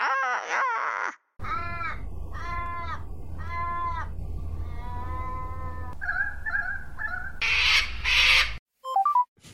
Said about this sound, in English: Australian ravens. We already have you.